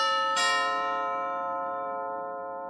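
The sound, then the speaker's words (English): A doorbell at a house's front door chimes once, a bright struck tone that rings on and slowly fades over a couple of seconds, heard clearly on its own with no voices. “A strange feeling overcame her as soon as she rang the doorbell.”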